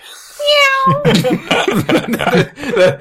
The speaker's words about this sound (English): a free floating cat just 360s around us. Oh, look at that. Look at that cat.